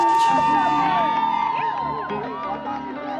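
A loud audience welcomes a performer coming up on stage, cheering and whooping with many overlapping shouts and high rising cries over a steady wash of clapping that fades slightly toward the end.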